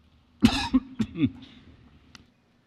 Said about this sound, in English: Cough and I can't seem to get rid of it. I guess everybody's got this cough and it's going around, and I've had it and can't seem to shake it myself.